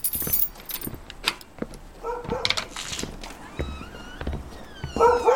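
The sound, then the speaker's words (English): A dog gives a few short, sharp barks, with a rising whine in between, over jingling metallic clinks and light rustling. No one speaks. “Can you control your dog?”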